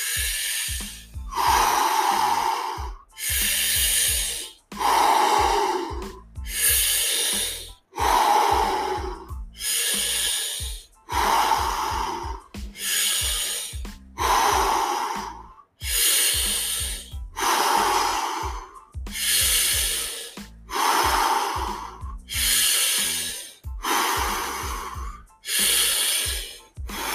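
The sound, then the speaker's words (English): Deep, rapid breaths drawn in through the mouth and pushed out, loud, repeating in a steady rhythm of roughly one breath every second and a half, with no talking, during a guided breathing exercise. “So we're going to start in 3, 2, 1, deep breath in through the mouth.”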